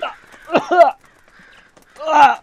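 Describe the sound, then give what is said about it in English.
A crow caws twice, each call a loud, harsh, raspy squawk, separated by a short, nearly quiet pause. “That pesky crow.”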